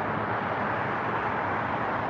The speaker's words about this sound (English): Oh, you hear traffic? Yeah, the highway's up there, man. That's nothing I can really help.